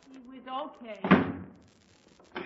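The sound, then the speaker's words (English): A voice speaks briefly, then a room door slams shut with a single loud, sharp bang that echoes and fades into quiet. “You're being punished, so get back in that room and close the door.”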